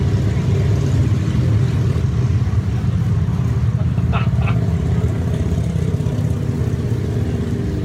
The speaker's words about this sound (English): All right, there we go. If it's not planes, it's motorcycles.